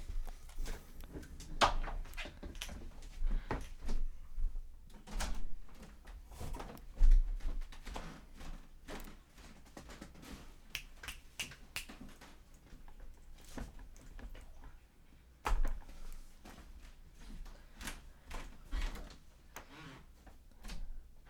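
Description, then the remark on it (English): The door to a recording room is shut amid a stretch of shuffling movement and clatter, with a few sharp knocks and thuds standing out over a low, steady background rumble. “Justin left the door open where we're recording our show”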